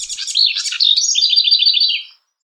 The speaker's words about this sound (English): Bird sounds, then, are sonic neurotransmitters that leap across species boundaries.